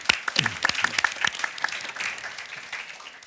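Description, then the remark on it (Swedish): An audience applauds in a dense burst of overlapping claps, with sharp individual hand strikes at the start that blur into a steady wash of clapping before tapering slightly. No voices are heard. “Det är väl värt en applåd, tycker jag.”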